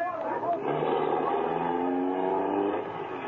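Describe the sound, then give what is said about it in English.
A car engine roars loudly and steadily, its pitch climbing as it revs and accelerates for a few seconds without a break. “Come on, you start that bus for him. Step on it, fella.”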